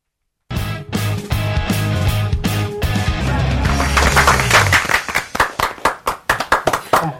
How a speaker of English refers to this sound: They clapped too early. Premature clapulation, that's all I can say.